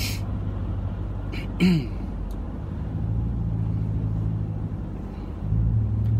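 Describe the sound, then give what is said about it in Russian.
Steady low engine rumble from inside a car moving slowly in a traffic jam, with a brief breathy sound near the start and the hum swelling slightly toward the end. “Если тратить время в пробке, можно и поговорить со своей семьей, да?”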